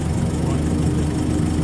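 A tractor engine idles, a steady, loud low rumble that chugs evenly without revving or fading across the short stretch.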